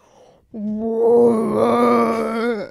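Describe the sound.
A person imitates a whale call with a single long, sustained moaning groan lasting about two seconds, steady and fairly loud, rising slightly at the end before cutting off.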